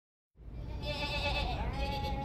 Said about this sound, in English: What the? Sheep. Lots of sheep. I can see that. But what are they doing here? Eating grass, probably.